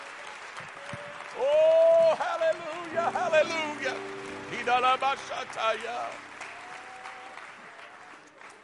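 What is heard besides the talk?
audience clapping hands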